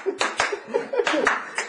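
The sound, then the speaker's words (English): Several sharp hand claps land at an uneven pace, fairly loud, with faint voices murmuring underneath between them. “We make it clap.”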